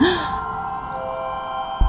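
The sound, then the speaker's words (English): A woman lets out a quick, breathy gasp of surprise as she unwraps a new iPad and presses its on switch, fairly loud, then the rest fades into a quiet electronic hum with a soft thump near the end. “… unwraps it and presses the on switch and gasps.”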